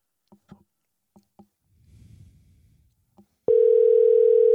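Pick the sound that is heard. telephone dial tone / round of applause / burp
telephone dial tone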